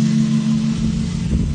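A farm pickup truck's engine idles at the farm fuel tanks in the morning while the truck is filled with fuel, a steady, low droning hum with a slight rumble, holding even throughout with no talking.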